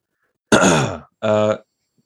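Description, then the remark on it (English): A voice imitates labored breathing and groaning in two loud bursts: a long strained groan, a short pause, then a second shorter grunting exhale. It portrays the character Honor System emerging from rubble and settling dust. “I think, again, weird to hear, but like the sound of like labored breathing as Honor System emerges from like the rubble and the dust settling.”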